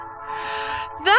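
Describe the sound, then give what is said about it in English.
A train passes, giving a steady droning hum with a rushing hiss that swells and fades, before a voice breaks in loudly right at the end. “Oh my God, there's a train passing here.”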